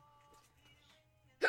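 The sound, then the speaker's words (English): A single sharp hiccup bursts out at the very end after a quiet stretch of faint low hum, loud, abrupt and brief. “Oh my gosh. Hiccups.”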